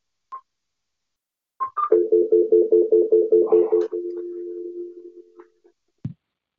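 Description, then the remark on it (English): A home landline phone beeps a few times as someone calls in to a live online broadcast, then a quick string of rhythmic dialing tones plays, followed by a steady ringback hum and a soft click at the end. No one speaks. “I'm going to go ahead and call in from my home phone so that the people online on the live can hear you.”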